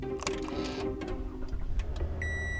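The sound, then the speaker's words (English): A car is started by pressing its push start button after a new key has been programmed: a whirring, clattering mechanical crank over low engine rumble, then a steady electronic chime tone sounds near the end. “Oh, well, we're just going to press the go button on your car and see what happens.”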